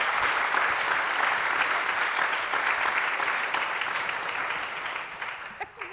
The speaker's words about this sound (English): But thank you to our people who went. Yes, very first of all, brave. Let's give our brave people a round of applause.